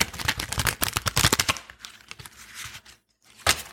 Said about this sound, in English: Let me see if I can catch the shuffling on the microphone. My fingers are really small, so shuffling tarot cards sucks because these are like slightly bigger than normal cards.